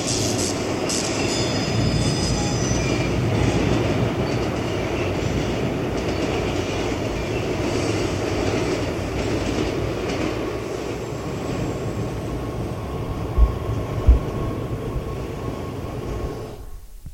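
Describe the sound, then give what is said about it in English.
A subway train rolls along the rails with a steady, loud rumble, faint metallic squeal early on and a couple of sharp clacks near the end, with no one speaking. “Now we have the priest getting off the subway here.”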